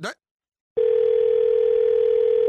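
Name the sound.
telephone dial tone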